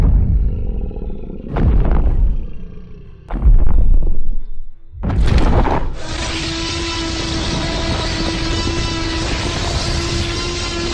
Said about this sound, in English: She's louder than I thought she would be. That roar would blow my hair back if I had any. Quick, open the barn doors. She'll tear this place apart.